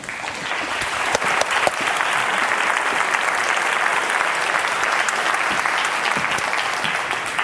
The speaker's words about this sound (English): and you know, please give her an extra round of applause.